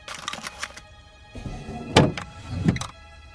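A bedroom drawer rumbles as it slides open during a search, ending in a solid thunk, then a second knock follows. A few light clicks and rattles come first; no voices.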